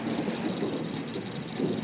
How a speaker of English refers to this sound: Come up on the porch. We're just sitting here watching it rain and talking about Louisiana.